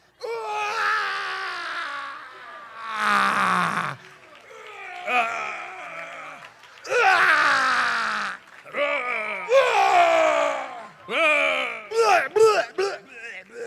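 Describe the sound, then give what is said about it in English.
A child's voice imitates the roar of the giant Goliath: a string of loud, strained, groaning bursts with a gagging, retching edge, ending in quicker, sharper yelps. “Sounded like he was throwing up.”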